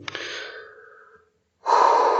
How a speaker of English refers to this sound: I just need to get my breathing right. Give me a moment.